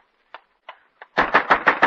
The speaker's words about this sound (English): Don't pound on our door so hard. I got noise, you know. Can't you be quiet, lowlifers?